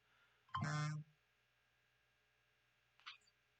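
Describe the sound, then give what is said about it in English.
A loud, half-second censor bleep, a steady electronic tone cutting over a voice saying what a special card was, followed by a faint, brief vocal sound a couple of seconds later. “That's why it got beeped out.”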